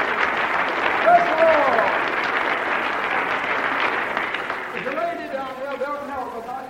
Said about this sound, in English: Oh, shall we give Jesus a hearty clap for it? Praise the Lord! Praise the Lord!